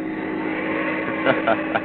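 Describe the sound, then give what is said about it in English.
A steady car engine drone hums throughout as the car drives on a mountain road, with a few short bursts of louder noise near the end, like a motor running at speed. “Shouldn't you be driving a little bit slower?”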